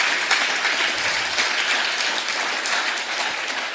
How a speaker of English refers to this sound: I also want to thank everyone who's made this day possible, including all of our fantastic sponsors, the University of Kent, AAW, and Open, our founding sponsors. So big round of applause.